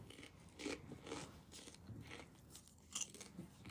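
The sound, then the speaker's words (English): Crunchy chewing of a snack, with repeated crisp bites and crackles spaced irregularly over a few seconds, loud, with no talking. “You're just munching in their ear?”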